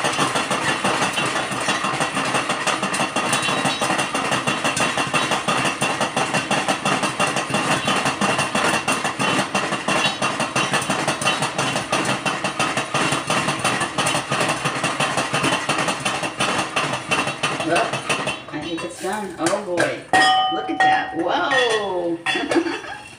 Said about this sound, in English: Hear that popping? Now I'm going to start just taking the pan and pushing it back and forth with the handle. The cover's on, of course.